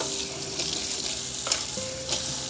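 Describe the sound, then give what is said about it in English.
A spoon stirs a cup of coffee, with a few light clinks against the sides and a faint ringing tone over a steady background hiss. No one speaks. “I spilled my coffee already, probably when I was stirring it.”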